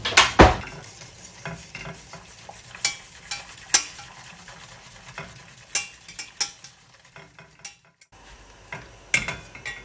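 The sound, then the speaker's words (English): Gravy bubbling and sizzling in a pan while a spoon stirs and scrapes, with irregular clinks and taps against the metal over a steady simmering hiss, moderately loud. “this is boiling away nicely, Jacqui. It's combined lovely, really, really well.”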